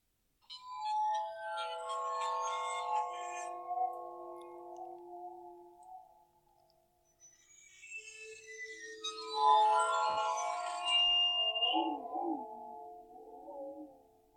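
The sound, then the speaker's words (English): A bowed, water-filled metal instrument, played with a violin bow, rings out in sustained, layered tones whose pitch wavers and bends slightly as the water swirls inside, two long swells with shimmering high overtones and no talking. “There's water inside it as it's swirling around. Yeah. It's changing the pitch of the note ever so slightly.”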